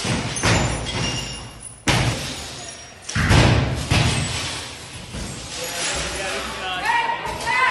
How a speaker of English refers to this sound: Here we go. Smashing the windows.